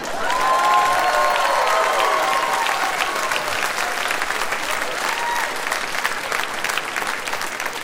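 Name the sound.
audience applause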